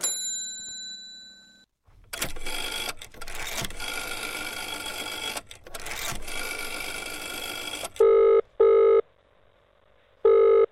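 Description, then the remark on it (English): A telephone is dialed to call the police: several bursts of mechanical whirring and clicking from the dial, followed by three short, steady electronic tones on the line. No one speaks. “Well, all right, I'll call the police.”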